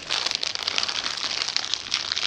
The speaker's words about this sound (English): Sorry, rolling up my Cheetos.